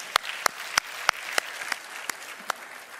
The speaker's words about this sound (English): I don't know about you guys, but I think this praise team just connected us to the throne room of Christ. Would you just give them a round of applause?